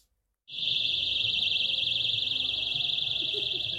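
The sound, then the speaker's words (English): A shrill electronic alarm kicks in abruptly after a brief silence and blares continuously with a fast warbling pitch, loud, over a faint low murmur. The alarms are on balloons flying around a Just Stop Oil banquet, set off by counter-protesters. “And gloriously, they had balloons which flew around, which had alarms blaring off.”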